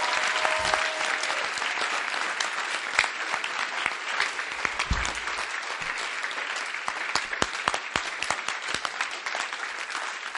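An audience claps steadily for about ten seconds, a dense patter of many hands at an even, moderate level with no voices standing out.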